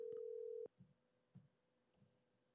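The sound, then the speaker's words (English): A phone's ringing tone on an outgoing call sounds once: a steady electronic hum, loud, lasting just over half a second before cutting off, leaving a few faint low thumps and no talking. “Oh, I thought I heard them ringing.”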